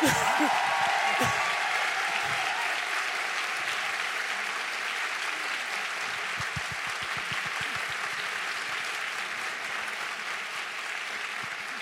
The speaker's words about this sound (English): One of the people who, you know, was one of the early, you know, black women, you know, political thinkers who seriously influenced my work, Angela Davis. So let's just give her a round of applause just because.